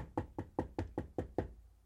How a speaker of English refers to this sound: The next morning, a beautiful woman in an attractive exercise outfit knocked on the man's door.